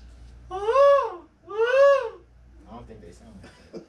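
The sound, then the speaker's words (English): A voice imitates a seahawk's call with two loud, shrill cries, each swooping up in pitch and then falling away, followed by someone talking quietly. “I got the what does a Seahawk sound like?”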